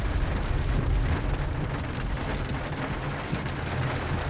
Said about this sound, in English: Heavy rain's back.